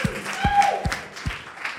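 Short burst of audience applause cheering for the bartender at a live broadcast: a handful of sharp, evenly spaced claps over a low wash of crowd noise, with a brief high whistle-like tone partway through.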